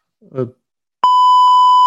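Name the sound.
beep sound effect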